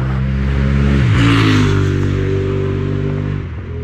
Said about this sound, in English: It's a motorbike, as you can probably hear.